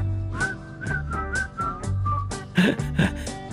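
Someone whistles a bouncy melody over a backing of music, the notes short and evenly paced, ending with a couple of brighter, louder whistled notes.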